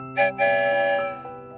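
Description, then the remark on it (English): A train whistle sounds as the train departs the Pflugerville train station: two quick blasts, then a long, steady, bright multi-toned note with a breathy hiss that gradually fades; no one speaks. “Let's head on down the tracks, away from the Pflugerville train station and out into the big world.”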